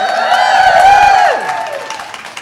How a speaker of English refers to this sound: For people listening to this the rebroadcast, there are like 20,000 people in the room right now. So let's give them a loud cheer, everybody.